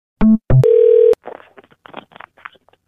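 A phone line goes dead after a hang-up: two quick low electronic beeps, then a longer steady dial tone, followed by faint, broken static crackling. No one speaks.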